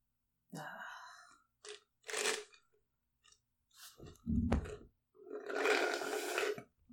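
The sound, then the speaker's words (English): Wet slurping and chewing noises while eating come in several short bursts with brief pauses between, ending in a longer, louder slurp. “If you hear my slurping, you're welcome.”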